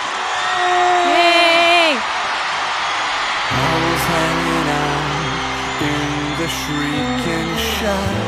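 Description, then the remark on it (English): A crowd of screaming preteen fans at a concert shrieks and cheers loudly for a couple of seconds, high-pitched and sustained, before the noise drops and band music starts playing. “Well, judging by the screaming preteens,”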